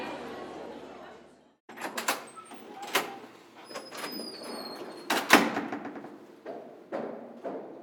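Metal chains rattle and clank as they are removed from a door, followed by a series of knocks, thuds and a faint squeak as the door is unlatched and swung open.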